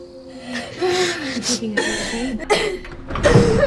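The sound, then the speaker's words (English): Strained gasping and ragged breaths from a woman having an asthma attack, with a few rough cough-like bursts, mixed with strained voiced sounds, growing harsher toward the end as she struggles to breathe. “She just had an asthma attack and she's barely breathing.”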